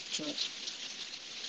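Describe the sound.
Steady rain patters in a soft, continuous hiss, fairly even throughout, with a brief murmur of a voice near the start.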